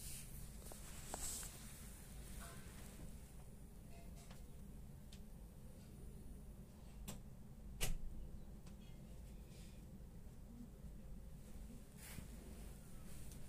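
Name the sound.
footsteps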